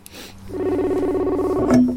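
A phone call connects with a steady electronic ringing tone that holds for about a second, then shifts to a brief, sharper tone near the end. It comes through clearly with no talking.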